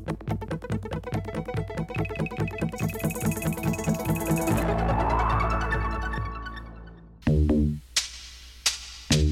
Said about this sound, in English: it actually had some of my early commercial sound design on it, like the Coca-Cola Pop and Pour. Coca-Cola Pop and Pour. The Atari logo.